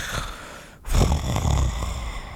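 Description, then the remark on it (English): A voice imitates snoring, giving a brief inhale and then a long, rumbling, throaty snore, loud and sustained, with no words spoken. “I got to say, you got me snoring over here.”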